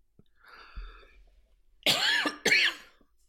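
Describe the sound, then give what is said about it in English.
A commentator calling a wrestling match gives two sharp, loud coughs, one right after the other, preceded by a soft throat-clearing rasp and some faint low rumbling. “Of course I would start coughing as it is.”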